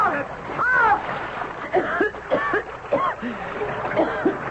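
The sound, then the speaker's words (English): Water splashes and churns as a person thrown over the side of a boat thrashes in the river, with excited shouting voices over the noise throughout. “Hey, I'm in the river.”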